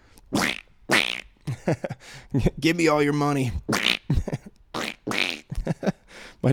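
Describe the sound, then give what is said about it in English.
A man speaks a short line in a raspy, quacking duck-like voice, with a warbling, strained stretch in the middle, imitating a cartoon duck. “My dog just looked at me like I'm an idiot for making duck noises.”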